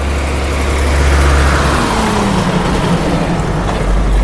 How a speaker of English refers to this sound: So for those who are listening in, there's coal trucks going past right now. So give me just a minute.